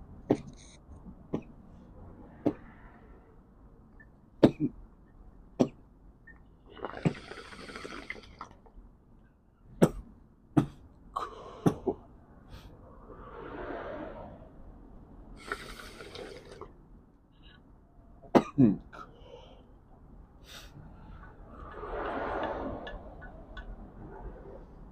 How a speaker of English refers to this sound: Bad bitch ices, but when you're done fucking, every time you start coughing like a bitch. Nah, bro, it's the hit you take after you're done fucking.